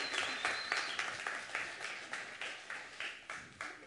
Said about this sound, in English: Would you please give Mr. Peter Holm a round of applause?